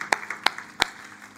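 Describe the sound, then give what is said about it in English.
A few sharp hand claps ring out in an uneven rhythm, three standing out above fainter scattered ones, with no voices over them, as an audience gives the Lord a hand clap of praise. “One more time, put your hands together and let's give the Lord a hand clap of praise.”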